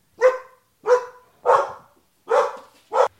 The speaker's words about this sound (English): Dogs that bark for no reason.